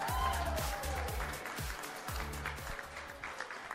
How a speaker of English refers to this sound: So everybody stand up. Let's get a good big round of applause going for all of our couples first this morning.